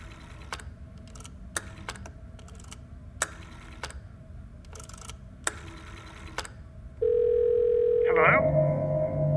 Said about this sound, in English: But he picked up the phone and dialed anyway.